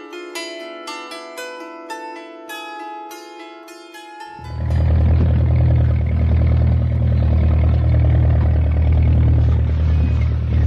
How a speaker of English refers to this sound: The deafening roar of the bulldozer was music to Ahmed's ears.